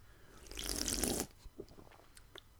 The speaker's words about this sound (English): Well, the one I'm drinking, we have different beers, is Dynasty Imperial Stout. Can I try that? Sure. Let me take a sip first.